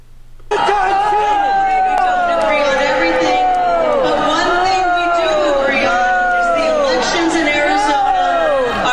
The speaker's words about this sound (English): This is Carrie Lake being booed.